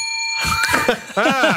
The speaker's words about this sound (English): I'm looking for any excuse to ring my bell.